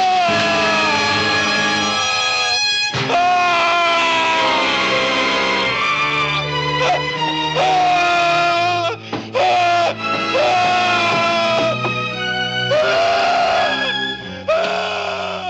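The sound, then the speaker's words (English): A man in a movie screams in agony as boiling water is poured on him, loud, with long anguished wailing cries that carry on almost without pause and break off only briefly between strained, drawn-out howls. “And he's just there screaming as his skin peels off.”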